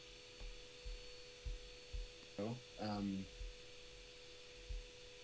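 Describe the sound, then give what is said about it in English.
A vacuum cleaner runs with a steady, muffled motor drone and a faint high whine throughout, with a few soft thumps and a brief voice partway through. “I wonder if the vacuuming is fucking with this.”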